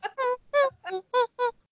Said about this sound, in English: Seagulls.